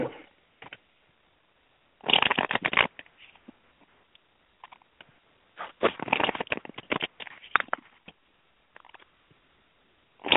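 Tarot cards being shuffled close by, in two main bursts of quick papery riffling and flicking with scattered softer shuffles between them, and no voices.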